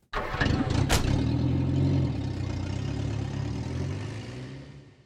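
A car engine cranks with a few sharp bursts, then catches and settles into a steady, rumbling idle that fades slightly toward the end.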